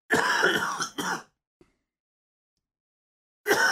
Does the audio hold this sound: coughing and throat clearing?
yes